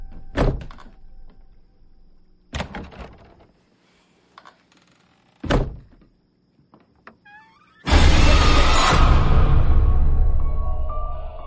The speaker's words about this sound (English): Can you close the closet door?